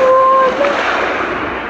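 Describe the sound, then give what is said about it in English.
Rough waves on Gitchigumi lake crash and wash in a steady, loud roar of surf, with a brief thin tone sounding over the start. “This lake is scary, especially when it's very, very angry. When it really gets its waves up.”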